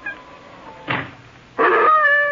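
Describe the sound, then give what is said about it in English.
An old hound named Rex whines in thin, high, wavering tones: a faint thread, a brief breathy burst, then a louder, sustained nasal whine to the end. Nobody speaks. “Lie down. Chicken-hearted old hound.”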